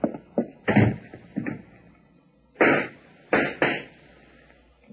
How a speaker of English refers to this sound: what were those shots? I don't know, Della. They came from the back hallway.